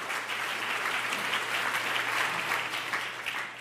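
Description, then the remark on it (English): A crowd of people clapping steadily in a round of applause for a helper on stage, a dense, sustained wash of applause that holds at an even level for a few seconds without any voices on top. “I think we should give Brad a big round of applause for helping me up here.”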